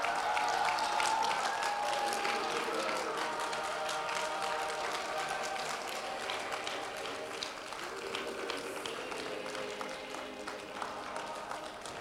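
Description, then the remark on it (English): A church audience claps steadily for about twelve seconds as people walk up to the front, a dense wash of many hands with some faint cheering, holding fairly even loudness before easing slightly toward the end. “I want you to clap like your mother's coming up here right now.”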